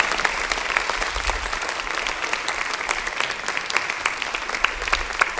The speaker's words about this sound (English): Now give God a clap of praise in this house.